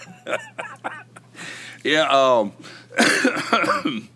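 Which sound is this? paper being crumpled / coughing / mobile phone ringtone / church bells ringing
coughing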